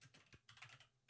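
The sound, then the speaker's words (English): Quick, uneven keystrokes clatter on a computer keyboard as someone types "election fraud" into a search, a rapid burst of clicky taps with no voices. “I'm just going to put election fraud in.”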